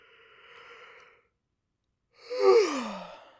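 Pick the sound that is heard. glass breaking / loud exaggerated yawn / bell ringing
loud exaggerated yawn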